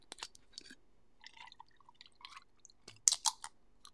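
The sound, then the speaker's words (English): American Honey whiskey pours from a bottle in quiet, uneven glugs and splashes with a few sharp clinks of glass, the loudest near the end. No one speaks. “Anyways, for SMR sakes, let's pour it up.”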